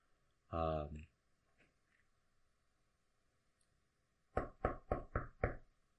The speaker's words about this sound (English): And we rejoin as Tess is knocking on an iron door.